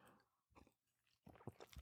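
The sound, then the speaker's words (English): Mouth noises as someone sips coffee: a soft slurp, a short pause, then a louder cluster of wet sipping and swallowing sounds, with no talking. “Sip check. Oh, sip and time check, because that's what we do here.”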